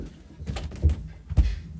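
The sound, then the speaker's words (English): A couple of dull, low thumps about a second apart as an already closed door is pushed against its frame, with no speech over them. “Door is already closed.”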